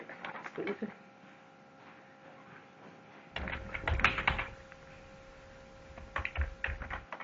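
Typing on a computer keyboard while writing a notice text in a document: bursts of quick, irregular key clicks, a quieter stretch in the middle, then a louder flurry of keystrokes with a few heavier taps near the end.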